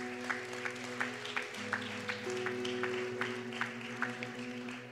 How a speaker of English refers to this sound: Come on, give a round of applause for those people today.